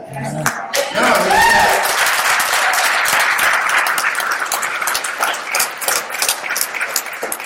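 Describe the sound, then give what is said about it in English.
A church audience breaks into sustained applause affirming a pastor at his ordination, a dense wash of many hands clapping that stays loud and steady, with a few brief voices and cheers rising over it at the start. “the people who are clapping are people who know you well.”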